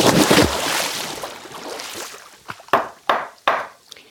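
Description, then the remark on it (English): A coffee cup being handled in a studio in Oklahoma: after an opening wash of rushing noise, four or five sharp, bright knocks and clinks ring out in an uneven rhythm, with no one speaking. “Actually, it's my coffee cup.”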